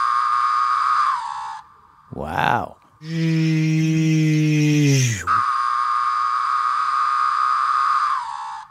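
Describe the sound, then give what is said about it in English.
A periodical cicada, Magicicada septendecim, buzzes loudly and steadily, broken by a single drawn-out 'pharaoh' call that swells and drops in pitch before the buzzing resumes. A voice briefly exclaims. “Magis cicada septendecim, the most popular known sound. And that's going the pharaoh sound.”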